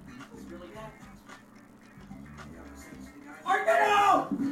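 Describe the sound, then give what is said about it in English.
After a stretch of quiet indistinct voices, a dog lets out a loud burst of rapid barking near the end. “Oh, the dog.”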